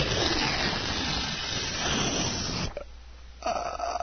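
A folded paper booklet is shaken hard, giving a dense, crackling rustle that runs steadily for almost three seconds, stops briefly, then starts again. No voices.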